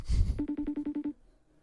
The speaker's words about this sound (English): By the way, this is an aggressive FaceTime call. It's super aggressive.